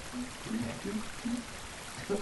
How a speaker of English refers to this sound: Picture this. You're standing in a room with a bubbling brook and fish floating through it. All is quiet and calm. All is quiet and calm. You can hear the burbling of the water.